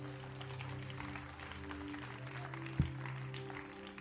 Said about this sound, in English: Clap your hands and bless God.